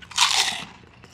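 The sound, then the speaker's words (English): A loud, crackly crunch as someone bites into crisp hot and spicy pork rinds, a burst of bright brittle noise that fades into softer chewing within about a second, with no talking. “These actually aren't as spicy as I thought they were going to be. I do like that. I love pork rinds.”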